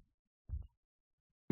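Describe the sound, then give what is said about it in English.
A short, muffled low thump, then a sudden loud, hissy burst of a sneeze at the very end after a moment of silence. “Bless you.”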